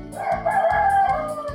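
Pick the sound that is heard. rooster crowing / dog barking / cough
rooster crowing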